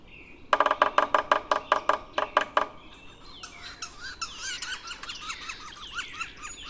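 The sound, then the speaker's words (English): Two yellow-bellied sapsuckers, a woodpecker species, in woods give a quick series of about a dozen loud, nasal, squealing calls, followed by fainter chirping and twittering from other birds in the background. “A couple of yellow-bellied sapsuckers.”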